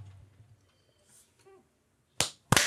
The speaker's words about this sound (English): All right. Yeah. That was a big clap.